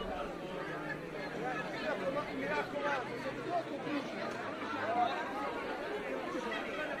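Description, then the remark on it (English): A crowd at the scene of Jesus's execution murmurs steadily, many overlapping voices blending into a continuous babble with no single speaker standing out, holding a fairly even level throughout, as they expect the death of Jesus. “Some of the crowd has dissipated, yet there seems to be an intensity as they're expecting the death of Jesus.”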